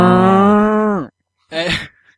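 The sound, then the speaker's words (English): A person imitates a cow with one long, steady, nasal moo lasting about a second, ending in a downward slide, followed after a pause by a short, breathy, loud vocal burst. “Was it mooing?”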